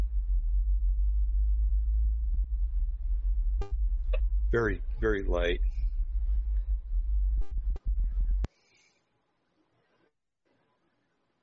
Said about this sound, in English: Okay, the Windsor Hum is noise pollution. Residents have suffered through these types of film episodes for over 2 years.